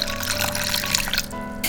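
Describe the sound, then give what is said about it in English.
Water pours steadily into a mixing bowl of flour, eggs, salt and pepper for kimchi pancake batter, a continuous splashing trickle that thins out and stops near the end, with no voices. “Then I'm gonna put some water in here.”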